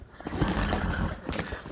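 A horse whinnies in a rough, sustained call lasting under two seconds, with a few soft hoof clops underneath and no one talking.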